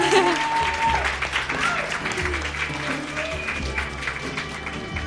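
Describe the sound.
A crowd at Raconteur Denver, a storytelling event held at Spangling in Denver, claps for the hosts steadily for several seconds, a dense, sustained patter of many hands at fairly even loudness, with a few voices and a low hum beneath it.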